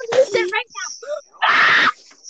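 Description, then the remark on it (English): A man lets out a loud scream to release his anger: a strained, wavering vocal cry followed by a harsh, raspy burst held for about half a second before cutting off. “has to scream to release his anger so he doesn't end up killing somebody.”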